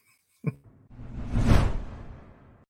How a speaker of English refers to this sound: So let's bring her in. Get ready for the swoosh.